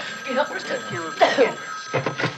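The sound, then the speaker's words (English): A telephone rings with a steady electronic tone at 11:30 at night while people talk over it, their voices overlapping the ringing throughout. “No, it's my phone. I'll get it.”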